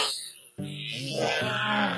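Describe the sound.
A person growls out a long, gravelly imitation of a cranky bear's roar, fairly loud, starting after a brief breathy pause and swelling toward the end.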